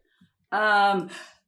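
A single sneeze breaks a quiet moment: a sudden, loud voiced burst followed by a breathy, hissing release that fades away. It is isolated, with no talking around it.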